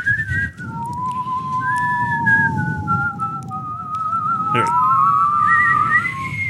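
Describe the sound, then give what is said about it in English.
Two people whistle at once with their mouths, long wavering tones sliding slowly up and down, fairly loud, with breathy low rumble underneath and no talking. “Except for whistling.”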